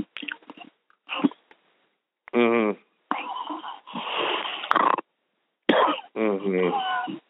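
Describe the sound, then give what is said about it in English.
Loud bursts of raspy snore-like breathing from a sleeping person on a phone party line alternate with harsh coughing fits, separated by short pauses, with a few quieter clicks and breaths at the start. “You're snoring a lot and then you're coughing.”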